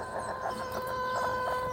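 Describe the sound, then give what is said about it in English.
A young pullet hen that has not yet laid eggs clucks loudly and insistently, a steady run of harsh, repeated clucks with a bright, strained tone and no talking. “What have you got to say for yourself, hen? Pullet? Lay me an egg.”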